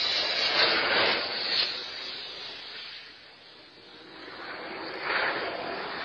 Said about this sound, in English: Here's the first one. And you can kind of hear the airplane coming in over the top of this home. Looks like their backyard.